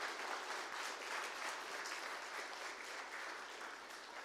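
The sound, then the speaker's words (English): A crowd applauds a man after his testimony, a steady, dense, sustained wash of applause that holds at a fairly even loudness for a few seconds, with no voices standing out. “All right, so give him a big round of applause.”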